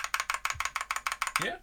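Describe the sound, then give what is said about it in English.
Rapid, steady clacking of a custom mechanical keyboard, about a dozen crisp keystrokes in quick even rhythm, before a voice briefly starts speaking at the end. “But this is custom built mechanical keyboard.”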